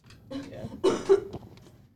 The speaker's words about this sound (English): I need water. He's coughing again. Oh, Jesus. You need to grab the water. It's getting serious.